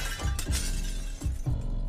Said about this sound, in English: I heard glass shatter by my patio.